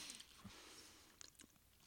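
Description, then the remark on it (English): Quiet chewing of ginger-flavored food: a few soft, moist clicks and crunches at irregular moments over a faint background hiss, with no talking. “As you chew, the ginger aromas permeate your nostrils.”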